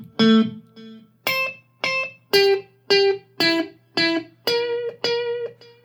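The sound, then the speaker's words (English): Overdriven electric guitar notes, played through an echo pedal plugged straight into the amp with the echo level turned up, ring out through a strong echo, repeating about ten times in a steady rhythm, each repeat staying nearly as loud as the first, with no voices. “So if we like turn that echo level up, we'll start to get more of the echo being more present.”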